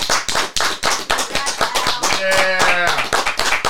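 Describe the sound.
Loud, steady audience applause with dense, rapid clapping throughout, joined midway by a brief voiced cheer or whoop over the clapping.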